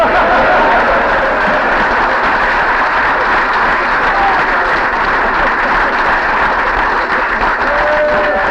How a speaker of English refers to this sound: And I think she ought to stand up to get a cheer because it's a hell of a feat.